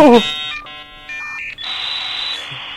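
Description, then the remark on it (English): Dial-up modem dialing tones: a quick burst of dialing beeps, then a string of steady electronic tones that change pitch step by step and end in a bright, sustained hiss-like screech. “This is, yeah, it's me, 12 years old, using dial-up to look at porn in the middle of the night and hoping my mom doesn't hear the modem going.”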